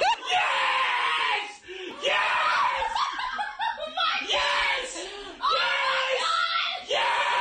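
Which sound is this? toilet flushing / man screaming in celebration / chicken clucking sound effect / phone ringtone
man screaming in celebration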